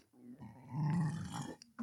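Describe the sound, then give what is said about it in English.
A long, low, rumbling burp, swelling in the middle and trailing off after nearly two seconds, with no talking over it. “Ooh, Lord, you should have did that into the mic, dog.”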